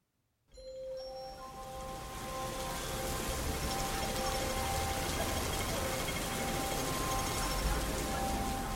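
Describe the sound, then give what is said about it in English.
Steady rain pours down in a dense, continuous hiss, fairly loud, drenching a stone wall in Hong Kong, while a bright chime rings out near the start and slowly fades beneath the downpour. “The secret message only appeared when the wall was drenched with rain.”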